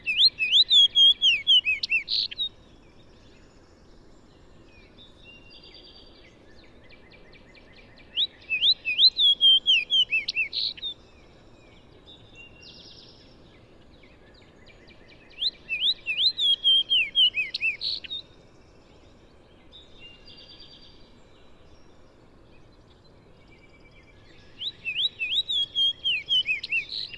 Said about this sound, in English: I'm very excited by this fox sparrow, so I spend a few minutes trying to chase one down, and boy, did I get a nice recording.